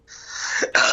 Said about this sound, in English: Gesundheit.